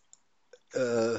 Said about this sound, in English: What's the word again? I was typing something in the chat room, so.